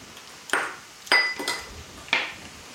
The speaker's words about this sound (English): Smashing some more garlic.